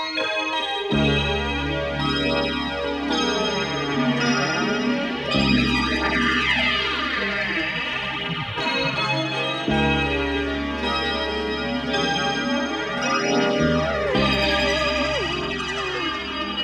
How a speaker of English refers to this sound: The song opens with a wash of synthesizers and keyboards and a gong with a flanging effect on it.